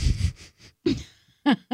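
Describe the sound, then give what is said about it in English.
Heavy, wheezy breathing from a person with a deviated septum: a run of rasping breaths, then two short, sharper voiced wheezes at the end. “You have heavy a deviated breathing. Septum.”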